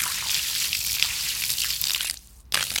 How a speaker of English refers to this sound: And so I dug all the way around it and I took it out of the mud. Then I poured some water on it.